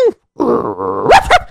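A dog lets out a drawn-out, grunting vocalization that ends in two quick, sharp barks, loud and with no talking around it.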